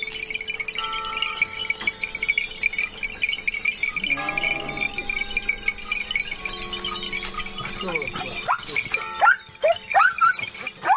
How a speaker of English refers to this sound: We leave you this week on a mountain along Italy's Tuscan coast. Near the village of Carrera, Stephen Feld found a shepherd driving his flock down marbled hillsides to the sound of bells from the village church.